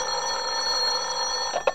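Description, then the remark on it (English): A telephone rings steadily at about 11 o'clock at night, its bright metallic bell tone sustained for nearly two seconds before breaking off abruptly, with no voices present. “The phone...”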